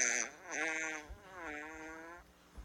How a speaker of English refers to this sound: You can see why he wants to record them, though. These aren't normal farts.